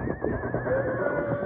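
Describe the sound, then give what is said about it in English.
A horse whinnies shrilly and continuously in a wavering, agitated, panicked cry, with a dull low rumble of movement underneath and no talking. “The horses woke me up.”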